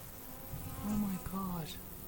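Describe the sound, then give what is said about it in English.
A dense, droning buzz of many drone honeybees swarming overhead, rising and falling in two fuller swells against a steady insect hum. “But the main thing was we could hear them in the sky, quite loud.”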